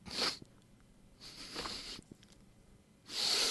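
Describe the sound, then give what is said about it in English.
Three breathy sniffs of someone smelling a sandwich, each a hissy rush of air, the middle one longer and softer, separated by quiet pauses with no talking. “So I want you to just have a quick sniff there”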